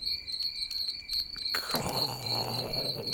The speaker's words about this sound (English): Insert even more crickets.